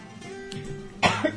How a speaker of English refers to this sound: Told you there was a cough, sorry about that.